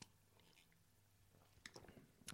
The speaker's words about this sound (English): Big gulp.